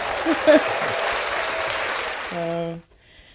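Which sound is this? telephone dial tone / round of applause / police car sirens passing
round of applause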